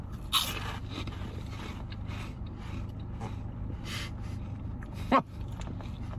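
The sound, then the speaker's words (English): Crunching as someone bites into crunchy cinnamon twists: a sharp, loud crunch at the start and another near the end, with softer crackly chewing in between and no talking. “It's going to be a big crunch, I'll say that.”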